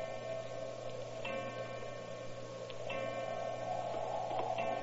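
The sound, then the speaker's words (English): A clock ticks slowly and faintly at eleven o'clock, a few soft clicks spaced out over a steady low hum; no chimes or strikes are heard. “Eleven o'clock.”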